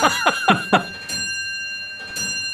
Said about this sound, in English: Oh, pardon my clock here.